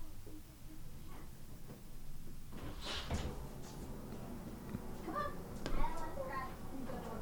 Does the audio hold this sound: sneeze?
no